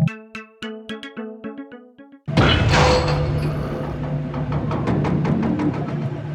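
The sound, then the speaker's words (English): A front door key drops from the ceiling: a quick run of bright, bell-like chime notes, then a sudden loud metallic clatter and crash that rings on steadily, with no voices. “Something dropped from the ceiling. Oh, look. It's your front door key.”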